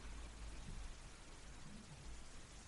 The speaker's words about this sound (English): Did you hear that? I think my wife just flushed the toilet upstairs. She'll be very pleased to have you know that.